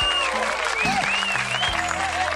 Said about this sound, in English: Round of applause.